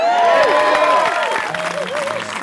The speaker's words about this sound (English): Thank y'all. It takes me a minute to get to the stage, so people got to clap extra long. So thank y'all.